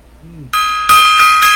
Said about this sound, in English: Gong time.